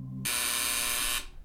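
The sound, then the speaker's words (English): A harsh, loud electric front door buzzer of an apartment sounds once, a continuous rasping drone held for about a second before cutting off abruptly, preceded by a faint low hum. “But he's surprised when the front door buzzer buzzes.”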